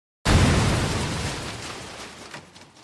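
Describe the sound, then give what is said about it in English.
A single loud explosion of a plane blown up by a remote self-destruct mechanism erupts with a sudden heavy boom, then rumbles and crackles as it slowly decays over a couple of seconds, with no voices present. “Ted puts remote self-destruct mechanisms in all of his vehicles. At least he waited until we were out of the plane.”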